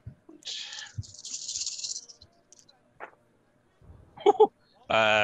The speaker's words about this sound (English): This is a lot of dice. 12 dice. Wow. Blimey.